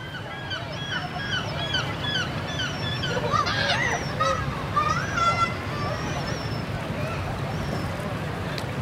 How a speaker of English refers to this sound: no wonder people have come in droves to enjoy a cloud-dappled afternoon at the beach in Bude, a seaside town in the northeast of Cornwall. Families build sandcastles, surfers head for the waves, and seagulls snatch chips from unsuspecting sunbathers.